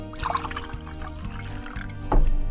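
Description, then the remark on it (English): Water is poured steadily into a glass, a continuous gurgling trickle that thickens and grows slightly louder near the end, with no one speaking. “So I'm just going to take a little bit of it here.”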